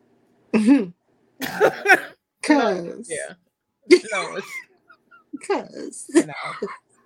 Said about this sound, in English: Big ass sneeze too.